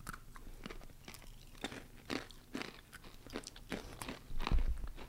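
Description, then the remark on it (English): Crisp, crackly crunching of small pea-shaped snacks being chewed, a rapid irregular series of sharp bites and munches with no talking, ending in a heavier thump. “So these come in like a square, a stick, in a pea shape.”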